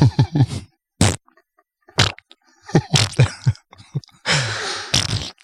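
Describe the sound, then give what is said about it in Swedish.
A voice imitates the fart of a car's built-in whoopee cushion: a few quick, sputtering voiced bursts and clicks, then a longer, loud, raspy blowing noise near the end. No actual speech. “Den inbyggda pruttkudden.”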